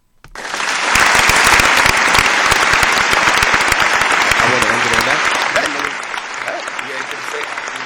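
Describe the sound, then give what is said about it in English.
Loud, dense audience applause swells in quickly and holds steady for several seconds, a thick wash of clapping hands, with a few voices calling out over it as it begins to ease. “Round of applause for this fucking man, please.”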